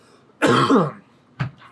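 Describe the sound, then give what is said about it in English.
A harsh cough lasting about half a second from someone who has a cold, followed after a short pause by a brief throat-clearing rasp. No one speaks. “I've got to take up smoking to control my cough, right?”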